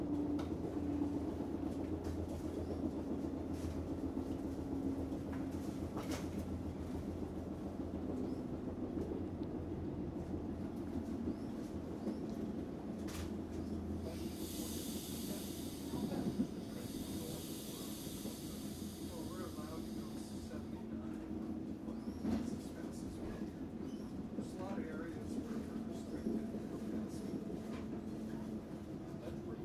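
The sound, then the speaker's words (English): Steady low rumble of a train heard from inside a carriage, with continuous droning hum, faint rattles and clicks, and a brief high-pitched whine midway through. “But I will just let this ambient train noise record for a minute so I can overdub it later.”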